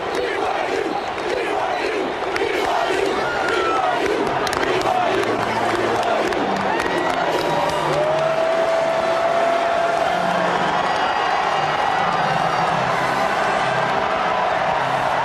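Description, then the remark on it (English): A large stadium crowd of BYU fans in blue roars and cheers continuously after BYU wins 29-26 on a 5-yard touchdown run by Tyson Williams in overtime: a dense loud wash of voices with scattered whoops and shouts rising above it, sustained without a break. “They're still cheering it while everyone in orange is filing to the exits.”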